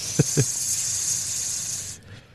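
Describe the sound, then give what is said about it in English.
A thin, high-pitched whistling hiss from air blown out through the nose, held steadily for about two seconds, with two soft low taps just at the start. “There's like a whistling sound when I exhale. Coming out of your nose.”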